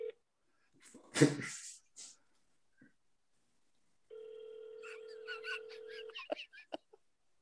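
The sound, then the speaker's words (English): A steady electronic telephone tone from an outgoing call hums for about two seconds, with scattered chirpy noises over it, after a brief louder burst of sound earlier. “Is that you calling him”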